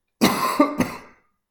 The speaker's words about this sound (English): I got a cough. Hold on. Pardon me.